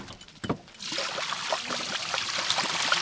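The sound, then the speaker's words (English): Water runs steadily from a hose into a sheep water trough, a continuous splashing trickle that starts after a brief quiet moment and carries on without a break. “We'll check the water too. So we're walking over to their water troughs right now.”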